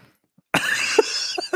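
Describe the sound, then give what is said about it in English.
After a brief silence, a harsh, raspy cough bursts out, caused by dog hair in the throat, trailing into a couple of short, throaty hacks as someone clears their throat. “I had dog hair in my you throat.”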